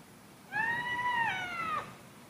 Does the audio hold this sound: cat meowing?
yes